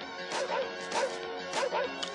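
A dog barks in a handful of sharp, loud bursts, roughly every half second, with a somewhat harsh, clattery quality and no speech alongside.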